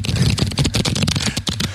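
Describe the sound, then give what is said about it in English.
Cards being shuffled: a fast, crackling flurry of papery riffles and flicks running continuously for a couple of seconds, fairly loud, with a low murmur underneath. “Let me shuffle one more time.”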